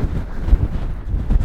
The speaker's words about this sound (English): Not surprisingly, the flag is not flying today. It's windy.